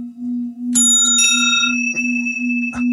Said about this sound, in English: You know, and how they might have been used in order, well, to maybe like ring them as if they were some kind of megalithic bell.